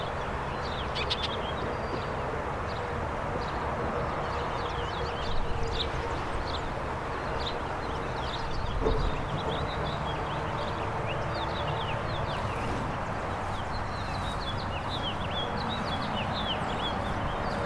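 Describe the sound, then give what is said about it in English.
A house finch sings a bright, warbling song that repeats throughout, set against steady outdoor background noise with occasional faint thumps and no voices. “House finch singing here.”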